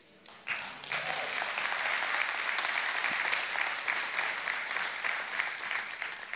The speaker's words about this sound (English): I appreciate the clapping, but I gotta be honest with you.